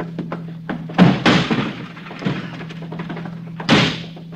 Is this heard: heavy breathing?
no